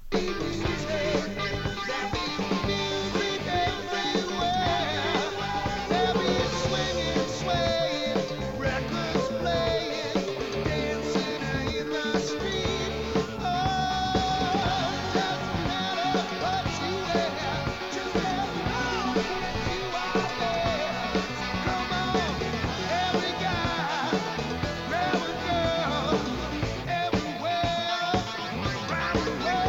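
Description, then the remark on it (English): A loud, dense rock chorus plays throughout, with a sustained lead vocal line riding over driving guitars and drums at a steady, full volume. “that chorus is screaming out for … doing high harmony on that lead vocal”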